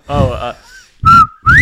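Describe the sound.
A person whistles a bobwhite quail call: a short lower note followed by a loud, sharply rising whistle, repeated twice, with a voice briefly speaking at the start.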